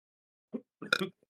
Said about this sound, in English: Wait, I gotta burp.